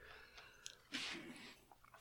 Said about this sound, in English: Take a sip of that and tell me you're not getting chunks when you take a sip.